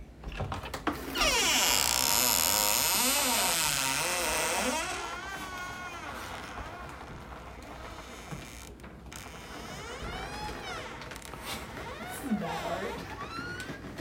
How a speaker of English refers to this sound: Well, before you walk in, there is a door. And the door creaks like this.